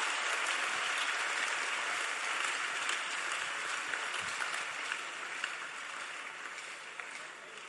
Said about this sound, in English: Wow. Clap for Jesus.